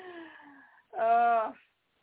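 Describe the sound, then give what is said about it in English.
A person yawns aloud: a softer, falling voiced sigh, then a brief pause and a louder, drawn-out moaning tone lasting about half a second before it cuts off into silence. “I keep yawning.”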